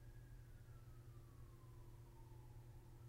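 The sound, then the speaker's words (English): An ambulance siren passes outside, its wail gliding steadily downward in pitch as it moves away, over a constant low rumble, with no one speaking. “Excuse the ambulance?”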